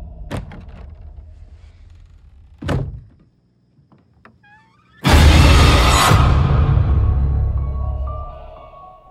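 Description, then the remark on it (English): A couple of dull wooden thunks, a short quiet pause, then a door closes with a loud slam whose heavy, rumbling noise slowly fades over several seconds, with no talking. “Can you close the door?”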